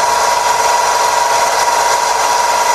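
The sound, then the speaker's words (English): A steady, unbroken mechanical hum from a car alternator under the hood, with a droning whine on top and a dense motor-like rush beneath. It holds an even loudness throughout with no talking. “And it's going to be more of a hum. And alternators are prone to do this.”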